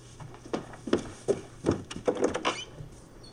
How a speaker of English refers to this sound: Oh, is there another one out there? Do you hear pecking at the door?